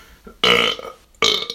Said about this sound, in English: And I have to burp because I drank too much water.